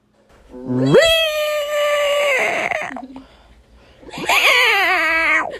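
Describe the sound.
A person imitates a cat with two long, drawn-out meows, the first rising and held for about two seconds, the second after a brief pause, loud with strong harmonic tone.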